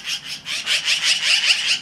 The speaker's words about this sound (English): All of it accompanied by the magpie's call, which is not exactly the bird world's sweetest.